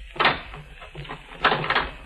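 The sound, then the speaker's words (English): A door shuts with a solid thump, followed about a second later by a quick pair of rattling clicks as it is locked, over a faint low hum. “Lock the door.”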